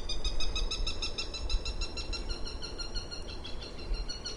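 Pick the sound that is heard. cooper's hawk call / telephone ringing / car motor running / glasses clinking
cooper's hawk call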